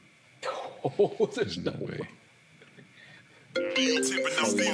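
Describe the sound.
A person talks briefly, then after a short pause a loud, bright electronic phone ringtone melody starts and plays steadily until the end.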